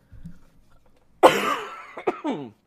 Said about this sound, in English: Forgive me, I'm going to be coughing a whole bunch tonight, and my voice is not going to be up to its prime.